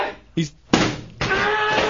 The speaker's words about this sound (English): He's throwing chairs.